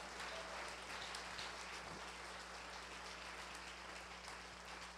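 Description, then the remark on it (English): After a prayer, an audience claps together to thank the Lord for his word, in a dense, steady wash of applause, many hands overlapping into a continuous crackling roar with no voices standing out. “Clap your hands and thank the Lord for his word.”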